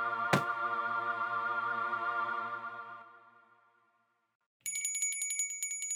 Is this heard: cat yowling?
no